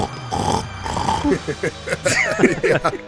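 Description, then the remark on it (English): A person imitates a pig with a run of grunting, nasal snorts and squeals, short choppy bursts rising and falling in pitch, fairly loud over a steady background hum. “It's so hard to do a snort without making a snort face.”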